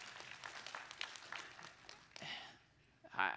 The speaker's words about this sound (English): Well, yeah, we can clap for that.